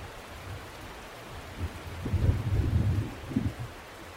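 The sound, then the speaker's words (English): A low, rolling rumble of thunder swells up midway and grumbles on for a couple of seconds over a steady hiss of falling rain. No one speaks. “Oh boy, there was a little more thunder. Did you hear the thunder?”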